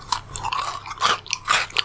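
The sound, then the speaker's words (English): Someone bites into a hard, dry McDonald's cookie that looks burnt and chews, giving three bright, crackly bursts of crunching about half a second apart, with softer crumbly chewing in between and no talking. “So you're digging into your McDonald's cookie, which you...”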